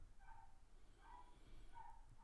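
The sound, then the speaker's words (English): Dogs next door bark faintly, four or so muffled barks at a loose, steady pace over a low background rumble, with no one speaking. “Can you hear the dogs barking next door?”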